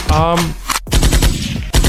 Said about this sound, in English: Oh, let me give you a little gunshot.